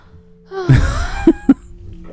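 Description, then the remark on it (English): A woman gives a drawn-out, exaggerated fake yawn, voiced, about a second long, followed by two quick sharp clicks or taps. “she just fake yawned.”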